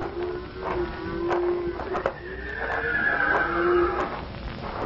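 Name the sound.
horse whinnying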